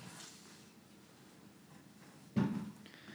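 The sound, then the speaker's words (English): A creaky chair gets swapped for another: soft rustling over quiet room tone, then a single heavy thump with a short scrape near the end. No one speaks. “I need to change my chair.”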